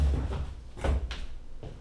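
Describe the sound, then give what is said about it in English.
A door is handled, with a few short knocking thumps and clicks spread over a couple of seconds against low background rumble, and no one speaking. “Lock the door when you leave.”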